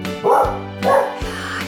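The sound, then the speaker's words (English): Milo, a farm dog, barks a few times in quick succession, two loud barks followed by a softer third, with no talking. “I hope you enjoyed singing along, listening to some great stories, and meeting Milo, the adorable, hardworking farm dog.”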